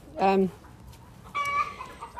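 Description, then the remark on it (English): Two loud, honking goose calls: a short harmonic honk, a pause of about a second, then a longer, higher-pitched call, heard over quiet outdoor background. “Morning, geese.”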